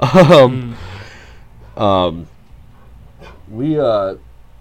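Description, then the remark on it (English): An upset dog, reacting to women screaming outside a window, lets out three separate whining yelps, each a short, pitch-bending cry, loud, with brief pauses between them and a faint background hum. “There's, like, women screaming outside of my window right now. And it's upsetting my dog.”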